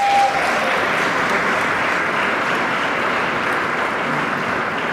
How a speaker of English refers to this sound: Let's give a round of applause to labor.